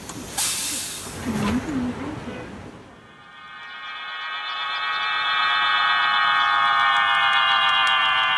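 Pigeon whistles on pigeons flying over Beijing: after a few seconds of broad hissing noise, a steady, airy chord of several high whistling tones swells in and grows louder, droning on without a break.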